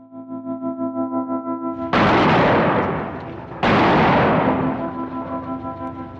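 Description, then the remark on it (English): A pulsing, droning tone is cut off by a loud explosion of an extremely large bomb on a railway line, then a second massive blast roars out about two seconds later, each a broad rumbling burst that slowly fades. “It was an extremely large bomb on the railway line, aimed simply to kill and to damage.”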